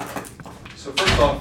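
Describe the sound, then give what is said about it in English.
An office door swings closed with a solid thud near the end as a newsroom meeting begins, preceded by faint shuffling and quiet room noise. “Let me shut the door.”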